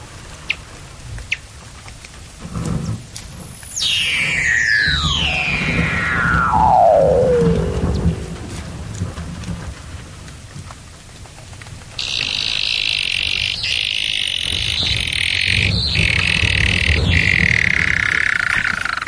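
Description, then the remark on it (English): Seals calling underwater at the edges of coastal sea ice: a long, eerie whistle gliding steadily downward over several seconds, then a high, buzzing trill that holds on for a while, loud over a low watery rumble. “a sort of crumple zone near the coast where the wave action and the tidal action pushes huge slabs of ice up into the air like random concrete structures, and the seals gather on the edges, hauled out, but also vocalise under the water.”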